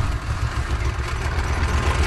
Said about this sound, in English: Sounds like a tractor.